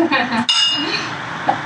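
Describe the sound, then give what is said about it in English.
Glasses of a drink made of seltzer water, coconut water, mango and crushed ice clink together in a toast: a bright ringing tap near the middle, its tone lingering briefly, with soft background murmur and a faint second tick toward the end. “Cheers. Cheers.”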